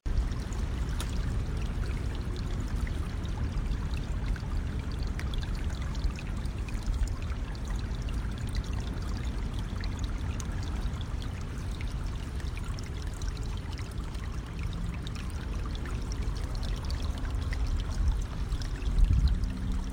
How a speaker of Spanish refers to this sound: Con una mochila llena de galletas y una brújula, Valeria se adentró en el bosque, pasando por un río donde el agua jugaba con las piedritas.